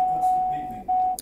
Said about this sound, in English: What's the beeping? My bad. It was my. I'm in my truck. Give me a second.